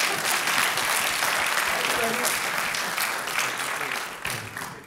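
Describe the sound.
An audience claps steadily for several seconds, a dense wash of hand claps that stays loud before tapering off slightly toward the end, with faint voices mixed in.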